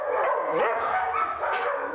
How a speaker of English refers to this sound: The sound of dogs is all too familiar to the Hocking County Humane Society as they deal with them every day at work.